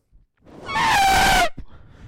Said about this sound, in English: Oh, do you know, so I thought baby elephant to begin with, but then I thought no, F1 car stopping in pit quickly. No, that is three elephants. Oh no. So it is elephants, elephants or F1.